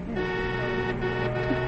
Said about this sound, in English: Traffic seems to get worse every day.